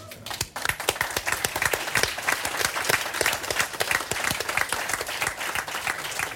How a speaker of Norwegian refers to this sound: Jeg fikk applaus til at jeg var veldig klok.